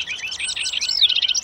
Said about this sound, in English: No, I said hearty cheering, not hearty chirping.